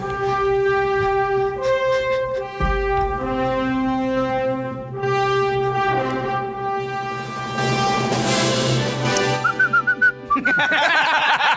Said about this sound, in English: I didn't realize there was whistling in the Superman theme. Unbelievable. Weird. Michael Winslow actually whistled the theme.